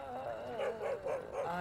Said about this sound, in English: And you heard clearly the sound of a dog in immense pain, thumping with an incredible amount of force, feet away from you.